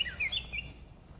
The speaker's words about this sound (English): Oh, it's a finch. Oh, he was right there. That's so cool. Hey, buddy. Such a beautiful song. Hear it? Hope you don't mind me stopping to enjoy a songbird. It's so cool. He's right there. He was so loud.